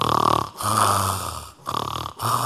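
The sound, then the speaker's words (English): Loud snoring repeats in quick succession, each rasping inhale followed by a lower rumbling snort, with no talking alongside. “You know, women snore too.”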